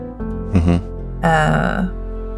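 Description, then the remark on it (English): Two short, rough throat-clearing bursts, the second longer and harsher, sound over a steady low hum with no talking. “I might have been clearing my throat when I said that.”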